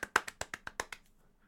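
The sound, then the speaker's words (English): A quick burst of about eight sharp hand claps in a fast, even rhythm, like a clapping seal, trailing off into a few faint taps at the end. No one speaks. “I clap like a little... It's a good seal.”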